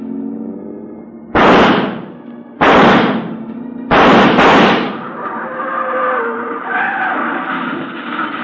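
Shotgun blasts from a man in a car ring out over the car's running engine: three loud, sharp booms, the last one doubled, each followed by a brief roar, then the engine keeps rumbling on.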